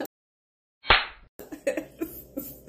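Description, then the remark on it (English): After a moment of silence, a single sharp, loud slap cracks out and quickly fades, followed by a stretch of muffled vocal sounds. “Anyway, Will Smith slapped Chris Rock at the Oscars this year, and it's been a whole thing, you know”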